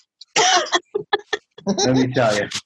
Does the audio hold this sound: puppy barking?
no